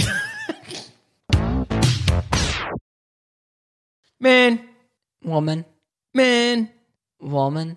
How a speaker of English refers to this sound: Man, there's a horse in your bathroom.